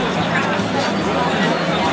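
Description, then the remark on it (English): A dense, steady murmur of many voices fills busy Flatbush Avenue in the evening as crowds head to a Nets–Lakers game at the Barclays Centre, with an even wash of city noise beneath the overlapping chatter, fairly loud throughout. “Oof, Flatbush Avenue is busy. Crowds of people on their way to a game at the Barclays Centre.”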